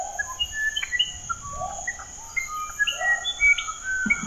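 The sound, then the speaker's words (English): A bird sings a varied string of clear, whistled notes, some sliding up or down in pitch, over a steady high insect drone and faint low rumble. “And here's the song.”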